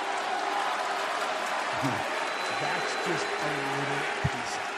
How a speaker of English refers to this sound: It's funny. It's funny I hear boos, but I also hear clapping. That's interesting.